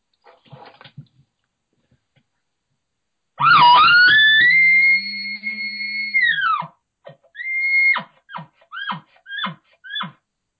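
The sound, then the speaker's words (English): An imitated aggressive bull call: a loud, rising, drawn-out high whistle held for about three seconds, then dropping off into a rapid run of short, punchy grunting chuckles, with faint breathy sounds before it. “But if he's not responded to my cow calls, then, you know, then I would start to get aggressive with him. Show me some aggressiveness.”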